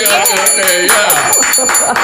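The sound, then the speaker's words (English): A bell rings with a steady, shimmering high tone that lasts the whole time, while several voices talk and laugh over it. “I got to get that bell out.”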